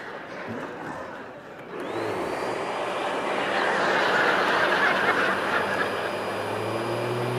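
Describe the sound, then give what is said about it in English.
A vacuum cleaner switches on with a rising whine, then settles into a loud, steady roar that continues without pause to the end, with no talking. “I read one woman who said that the sound of a vacuum is foreplay, is what she said.”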